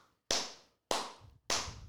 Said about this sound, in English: Hell yeah, there should be more people clapping. All right, I should have a bank of people, like a little team listening right now of producers. If I did, they'd all be clapping. Wouldn't that be more impactful?